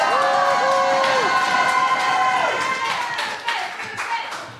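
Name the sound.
audience applause and cheering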